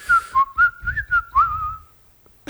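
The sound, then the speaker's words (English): A person whistles a short, wavering tune inward, sucking air in, the pitch sliding and trembling over a couple of seconds with airy breath noise between notes, followed by a brief burst of noise at the end. “You suck in when you whistle.”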